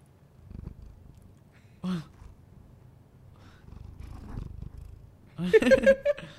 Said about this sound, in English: Oh, he's purring.